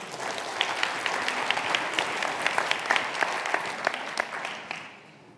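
A crowd applauds steadily, many hands clapping in a dense, crackling wash with sharper individual claps poking through, then fading out over the final half second.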